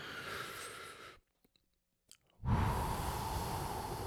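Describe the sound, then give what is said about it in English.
A long, airy inhale from several people at once, then a brief silent pause as they hold it, followed by a loud, rushing exhale that trails off. No talking. “Let's do an in-person breath.”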